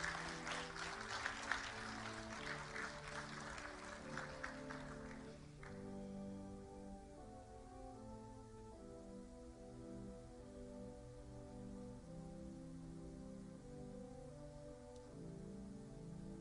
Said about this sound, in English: Let's have a round of applause for our high school graduates.